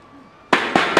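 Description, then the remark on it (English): A steel chair slams into someone three times in quick succession, each hit a loud, harsh metallic crash that rings on briefly, following a half-second of near silence. “You see that? That's a steel chair.”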